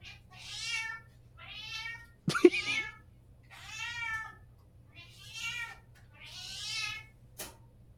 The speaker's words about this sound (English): That was almost like an angry meow. Oh, yeah. It was like accusatory.